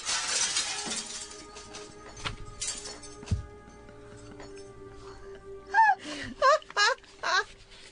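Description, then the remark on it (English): Glass shatters loudly at the very start in a bright, crashing burst after a gunshot passes through a man, followed by quieter thuds and then a few strained, gasping vocal cries near the end. “With blood and shatters.”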